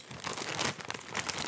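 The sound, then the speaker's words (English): A full chip bag is crumpled, giving a steady run of crisp, crackling crinkles with sharper pops throughout, fairly loud and with no one talking. “My crumpling is going to be... You're right. These are so full, I can't even roll this up.”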